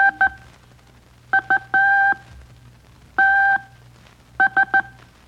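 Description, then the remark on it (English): Morse code beeps of a telegraph message sent over the wire, quoting a message from an American general: a steady two-pitch tone keyed in short dots and longer dashes, about a dozen pulses in uneven groups over a low hum, with no one talking. “Now, you kids are to identify the general from hearing his message as it went over the wire in Morse code.”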